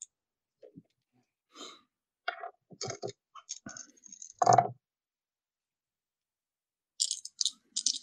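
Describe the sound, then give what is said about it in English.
Dice are rolled for weapon damage in a game, clattering and rattling across a tabletop in a quick burst, followed by a short sharp clatter as they settle, with scattered small clicks and taps around it. “Roll your dice.”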